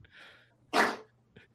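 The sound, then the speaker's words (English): A single sneeze: a quick, breathy inhale followed by a sharp, explosive burst, then a faint short exhale trailing off. No talking. “I got to sneeze. I have to sneeze.”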